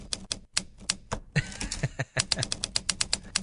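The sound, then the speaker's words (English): Rapid typewriter keystroke sound effects from Tom Hanks' Hanx Writer typewriter app on an iPad clatter in a steady, uneven rhythm, with a brief burst of mechanical carriage-like rattling in the middle, crisp. “It's a fair dinkum typewriter for your iPad.”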